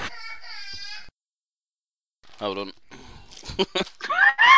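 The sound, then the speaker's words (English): A voice speaks briefly, then after a pause come high-pitched, wailing screams and shouts of children arguing upstairs about watching Peppa Pig, in short overlapping bursts, growing louder and shriller toward the end, with a bit of talk mixed in. “They're screaming their heads off.”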